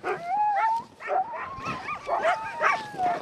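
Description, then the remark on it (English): Several sled dogs bark, yip and howl over one another in an excited, continuous chorus as they are harnessed to the line, with rising and falling wavering howls, loud, with no talking. “He gets out online, he gets excited, and he chews off the traces, but I got a different piece of rope put in now, hoping that'll work.”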